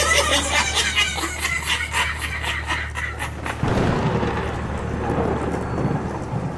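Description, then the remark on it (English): A rapid, crackling burst gives way midway to a sudden thunderclap and a deep, rolling rumble that lingers loudly to the end, with no voices. “After the thunder, I awoke upon the floor of the dilapidated ranch”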